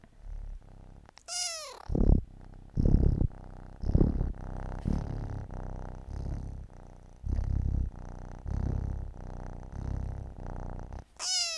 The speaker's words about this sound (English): Oh, there's my kitten again. Do you want to talk for people, kitten? Come here, talk. Oh, speak. Come on. Speak. Come on, purr.